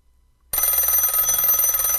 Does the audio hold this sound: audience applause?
no